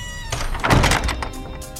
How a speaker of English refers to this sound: Hey, lady, could you shut the damn door? You're letting out the antidote.